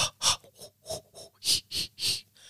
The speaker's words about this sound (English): Are you having a baby? That's Lamaze.